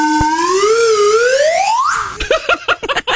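A slide whistle glides upward in one long, bright tone, dipping slightly before climbing high, then breaks into a flurry of short, choppy toots or bursts.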